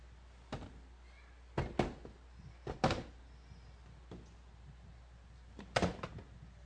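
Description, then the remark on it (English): Chairs being turned around, making a scattered series of wooden thunks and knocks at irregular intervals, some in quick clusters, with no talking. “you can turn those chairs.”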